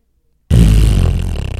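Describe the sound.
After a brief silence, a voice abruptly lets out a loud, buzzing, sputtering raspberry imitating air escaping from a balloon. It flutters steadily for about a second without fading.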